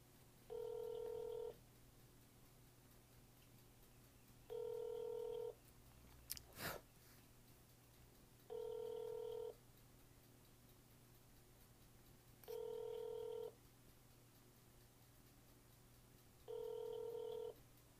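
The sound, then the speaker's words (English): A phone call being connected to an office in Minneapolis rings out with five steady, evenly spaced ringback tones, each about a second long with pauses between. A brief click interrupts partway through, and no one speaks. “We are now connecting you to the Minneapolis office of...”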